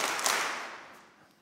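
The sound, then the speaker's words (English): An audience claps together on cue, doing a 'three claps' routine led by a speaker, in a dense, crackling burst that peaks early and then steadily fades away, with no voices over it. “Oh, yeah, there they go. Three claps.”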